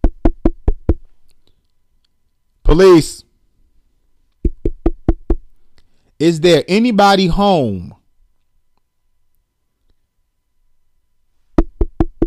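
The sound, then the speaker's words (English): Three bursts of firm, rapid knocking on a front door, four or five raps each, loud, with a man calling out between the first and second rounds before a long quiet pause. “So nobody thought to knock on the front door.”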